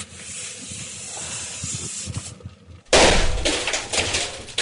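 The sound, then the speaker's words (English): A steady hiss of CO2 gas builds, then a sudden loud bang erupts about three seconds in as the CO2 pressure releases, followed by a harsh, roaring rush of escaping CO2 gas that continues loudly to the end. “There we go. Big bang. CO2 for you.”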